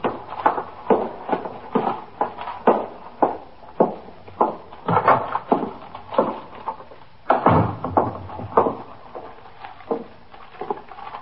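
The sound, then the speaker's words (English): The front door of a police station house opens with a thud, then steady footsteps tread up a flight of stairs to the detective squad in an even rhythm, with another heavier bump partway through. Nobody speaks. “Carrying a paper bag, he walked in the front door of the station house, through the back room, and up the stairs to the 21st Detective Squad.”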